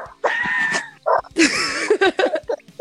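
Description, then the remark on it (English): A dog lets out a run of high, whiny yelps and short barks, rising and falling in pitch, broken by brief pauses, with no talking over it. “I know, we've upset Cindy now.”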